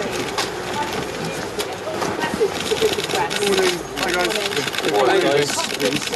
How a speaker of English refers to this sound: Do you hear all that clicking? That is insane to me. Those are all the cameras. All the cameras going off.